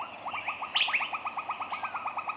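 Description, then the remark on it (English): A bird sings a fast, steady train of repeated chirps, with a brief louder trill partway through, in a quiet tree-lined side canal off a river, with no talking. “It's quiet. You hear birds and insects.”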